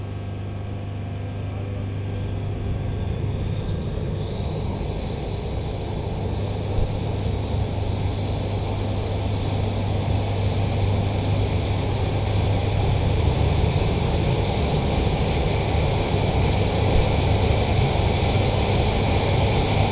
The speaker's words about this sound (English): Massive chopper. We got Sea Kings.